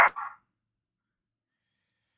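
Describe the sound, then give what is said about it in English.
A dog in a house gives a single short, sharp bark at the very start, followed by silence for the rest of the moment. No one is speaking. “They bark at me in my own house, it's ridiculous.”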